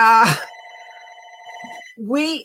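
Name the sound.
landline house phone ringing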